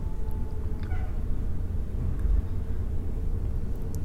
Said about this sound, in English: I like the sounds that are right here. There's kind of a background hum from the heating and cooling system, but the sounds of the trucks outside on Van Ralty is interesting. I like that in the background.